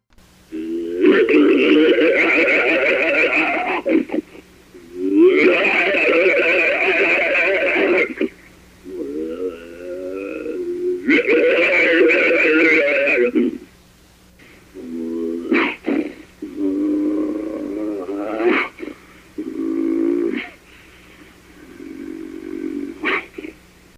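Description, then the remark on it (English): Harsh, loud snarls and growls from an unidentified creature, coming in several long, rasping bursts with short pauses, with no talking. “The snarls and growls could startle anyone”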